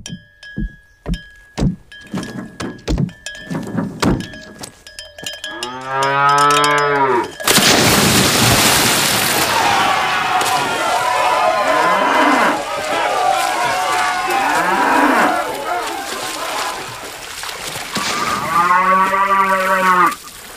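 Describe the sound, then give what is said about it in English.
A cow lets out a long, loud moo after a few sharp thumps, then a stretch of noisy crowd-like commotion follows before a second drawn-out moo closes things out. “And now a cow winning first prize in the belly flop contest at spring break, but then realizing he can't swim.”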